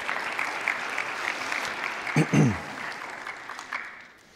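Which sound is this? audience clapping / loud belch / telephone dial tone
audience clapping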